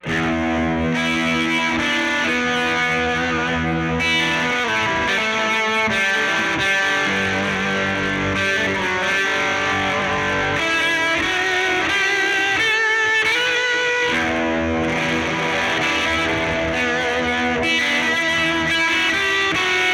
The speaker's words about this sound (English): I wanted you to hear how the tube drive sounds with stacking another drive pedal before it.